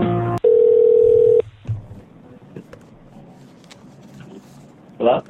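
A telephone call being placed to the creative director of Elevated Third sounds a single steady electronic tone lasting about a second, loud, followed by quiet line hiss and a short burst of noise near the end.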